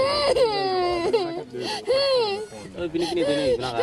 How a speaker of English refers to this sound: I could not forget the face of that small girl because she was in pain. And in the process of removing the worm, definitely you see her crying and crying.